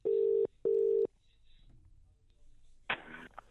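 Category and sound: signal or alarm, telephone call ringing tone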